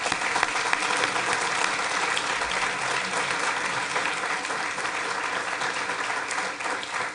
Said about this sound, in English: I would like to lead a round of applause for her.